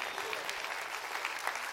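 A crowd claps steadily in response to a preacher's call during a sermon, many hands blending into a dense, sustained patter of applause with no single beats standing out, holding at an even level throughout.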